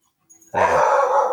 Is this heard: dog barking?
yes